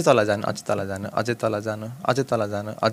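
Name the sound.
voice imitating pigeon cooing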